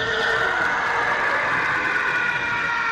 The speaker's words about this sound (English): So, 10 out of 10 to Ben Burtt. And he did basically all the sound design for all of Star Wars. I love this fact. There is the absolutely definitive TIE fighter sound.